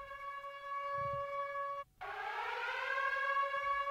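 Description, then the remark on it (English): A loud siren wails on a steady, harmonic tone, cuts out briefly partway through, then resumes with a wavering, rising pitch. No voices, just the siren alone. “Love a siren.”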